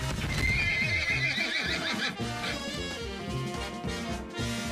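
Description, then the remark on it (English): A horse whinnies loudly with a long, shrill neigh while hooves clip-clop in a steady rhythm, with no voices present. “I know you're excited, but please, sir, hold your horses. They're too heavy.”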